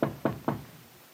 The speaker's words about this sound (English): She knocks on the professor's office door.